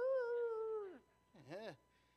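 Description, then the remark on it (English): A voice imitates neighborhood dogs howling: a long, steady wavering howl that drops off, then a shorter rising-and-falling yowl after a brief pause, fairly loud. “Then you pull them out and you hear the dogs in the neighborhood going, "Arr!"”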